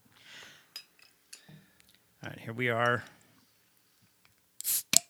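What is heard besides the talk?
beer bottle being opened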